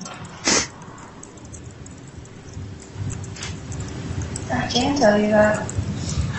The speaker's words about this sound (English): You might also have heard some sniffling in this recording